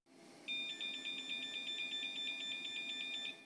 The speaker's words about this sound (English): So there we go. It's not exactly a tooting sound. No. It's more like a truck backing up. It's a honk. It's like a honk that repeats itself.